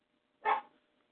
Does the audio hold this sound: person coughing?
no